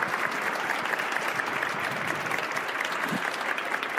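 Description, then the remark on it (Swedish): Steady audience applause for the lecturers fills the whole stretch, many hands clapping in a dense, even patter at a fairly loud level without pause, with no voices standing out. “Då tycker jag vi ger en varm applåd till våra föreläsare.”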